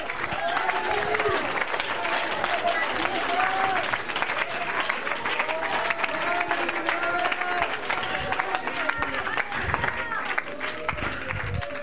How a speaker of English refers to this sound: Come on, somebody clap your hands and give him praise.